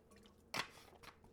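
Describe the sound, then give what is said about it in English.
A soft sip of Diet Root Beer from a bottle: a short wet slurp followed moments later by a fainter swallowing sound, quiet and with no talking. “Oh yeah, you're going to listen to me take those non-water breaks.”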